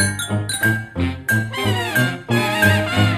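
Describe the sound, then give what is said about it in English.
A short burst of transition music: bright, chiming bell-like notes struck in a quick rhythm over a steady low bass tone, moderately loud with no voices. “Right after this transition music.”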